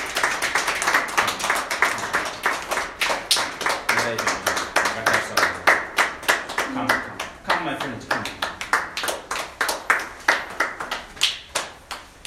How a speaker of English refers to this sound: Come, come. Let's clap for them as they come. Come.